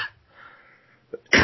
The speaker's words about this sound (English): I don't know if it's like well, if you're coughing, I'm coughing.